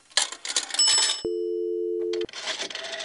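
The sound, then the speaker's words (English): A steady electronic telephone tone hums for about a second between bursts of clattering, rustling handset noise, like a pay phone line being dialed with a quarter and ringing. “You know, you could have used your cell phone to do this”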